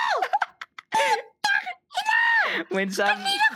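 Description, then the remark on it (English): A voice reenacts an angry scream at someone in a car in a few loud, strained, high-pitched shouted bursts, with short breaks between them. “No, I screamed at you in the car.”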